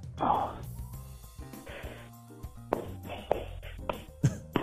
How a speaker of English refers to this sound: You smack your ass for me.